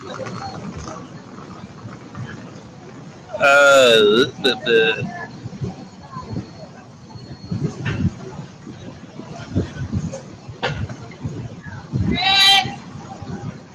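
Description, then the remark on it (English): Outdoors, people yell in two loud, strained bursts, one early and one near the end, over a steady hum of chatter and background noise. “I'm outside. There's just people yelling and stuff.”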